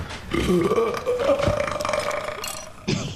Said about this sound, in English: I've heard some mighty burps in my time, but that's the Blue Ribbon Baby.